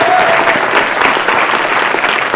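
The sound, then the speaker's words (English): An audience claps steadily to thank the volunteers, from the tech team to teachers and guest services: a dense, continuous wash of many hands at a loud, even level throughout, with no voices standing out. “Can we just applaud them and thank them for their effort?”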